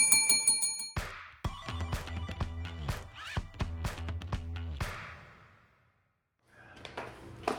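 A rapid, trilling bell rings at the start, then bright, loud bell-like hits sound in a quick rhythmic run for several seconds before a short silence and a quieter ringing return.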